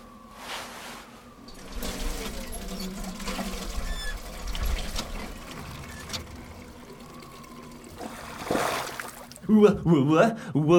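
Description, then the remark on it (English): A hand water pump creaks through repeated strokes as water gushes and splashes, used to revive a man who has fainted, with a man's voice breaking in near the end. “Drag him over by the pump. Perhaps some water will help him recover from his fainting fit.”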